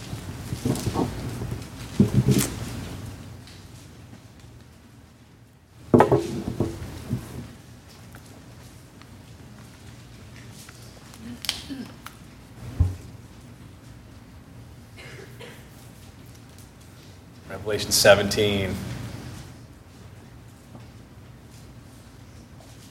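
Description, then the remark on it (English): Bible pages being turned to Revelation 17 during a service, heard as several bursts of dry papery rustling separated by quieter stretches, with a man speaking briefly near the start. “Still hear lots of good rustling.”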